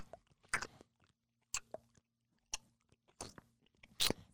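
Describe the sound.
A voice imitates wet, sticky chewing of a fruit roll-up balled up in the mouth, with five or six irregular smacking, squelching bursts separated by short pauses, as if working through a gummy mouthful.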